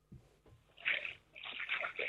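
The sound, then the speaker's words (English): Someone wading through a river in Bradford, with two bursts of sloshing and splashing, fairly quiet, and no voices over it. “I am in the river at the moment.”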